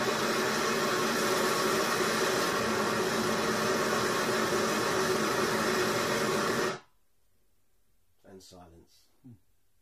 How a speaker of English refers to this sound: Must have been quite shocking in an auditorium when you watch this in 1974. That loud rush of water. It's quite striking in silence.